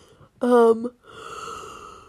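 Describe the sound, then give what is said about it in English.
A drawn-out yawn: a loud voiced stretch that wavers in pitch, then trails off into a long, breathy exhale. No words are spoken. “I'm yawning again”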